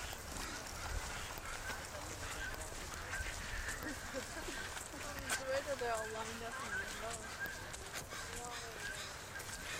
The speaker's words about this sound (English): Here's that goose. Hey, you goose, you silly goose.